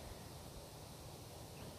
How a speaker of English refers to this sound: Even when there's what seems like silence, you can normally hear something. I can hear the wind through the trees.